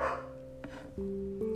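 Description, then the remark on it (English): A male dog barks a few times in the background, short yelps spaced unevenly over a steady humming tone, fairly faint. “He's barking if you can't tell in the background, but he's a good boy.”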